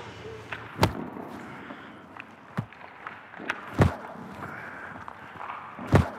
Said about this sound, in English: That thud is the sound of a rubber hockey puck that's been shot at Gibson that he is blocking with his body. It's kind of a crazy position where your job is to put your body in front of hockey pucks